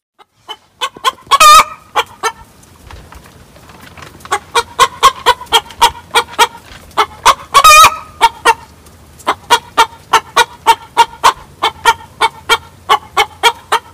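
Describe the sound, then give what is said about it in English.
A hen's egg song rings out alone: a long run of sharp, evenly paced clucks, broken twice by louder drawn-out squawking bursts, loud throughout. “If you have chickens, you might already know, but if you aren't sure, it's the egg song.”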